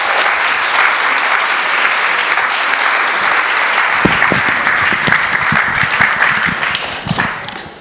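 A crowd applauds steadily for several seconds, a dense loud wash of many hands clapping, with a few sharper, heavier claps standing out toward the end.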